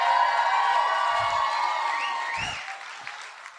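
A crowd applauds a man the speaker points out in the audience: a steady, dense roar of applause, with a few rising whoops and cheers cutting through midway before the clapping gradually thins out toward the end.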